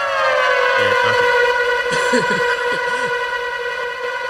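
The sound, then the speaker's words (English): A loud, steady siren wails continuously, its strong harmonic tone filling the whole stretch, while faint voices murmur underneath partway through. “It's a siren.”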